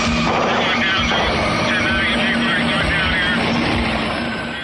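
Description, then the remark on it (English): A loud, continuous roar of a helicopter engine with a steady droning hum, layered with rumbling crashes and bursts, and muffled voices mixed into the chaotic din. “we're thrust into the action as we see a smoking helicopter go down in flames already in progress.”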